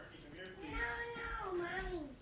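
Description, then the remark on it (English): A toddler's high-pitched vocalizing and babbling, continuous for a couple of seconds with rising and falling pitch, no clear words. “Sorry, I have a little toddler who's noticed me.”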